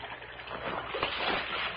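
A dead body is dropped back into a creek: water splashes and sloshes as it falls back in, a broad churning surge that swells midway and then keeps lapping, with no voices.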